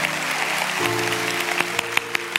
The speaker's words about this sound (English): Okay, if you're standing up, don't clap. Just receive the applause of the people around you.